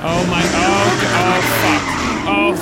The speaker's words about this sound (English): She went back to her car. Okay, and she's peeling off. Oh my god, oh, she's doing donuts around my car.